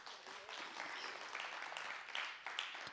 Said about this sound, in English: I think you ought to give Him a clap offering for that.